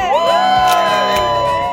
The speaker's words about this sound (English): All right. Texas in the house. Everybody in the house. We got a big crowd. It's a rainy Monday. We got a packed house.